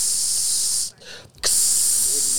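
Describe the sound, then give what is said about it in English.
A voice imitates an Air Wick aerosol spray can being sprayed into a plastic bag, with a loud, steady hiss, breaking off briefly in the middle before a second long burst of spraying. “So he go get a plastic bag and some aerosol spray, the Air Wick joint. This motherfucker spray half the can in the bag.”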